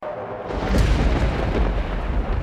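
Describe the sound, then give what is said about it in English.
A dramatic, thunder-like music sting played as tournament fanfare: a deep, loud booming rumble that swells in after a brief quieter start and rolls on steadily, with no voices over it. “I have Patreon fanfare, and then I have tournament, like it's like a thunder.”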